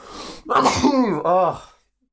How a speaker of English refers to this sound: I'm going to sneeze. There it is. Double bless you.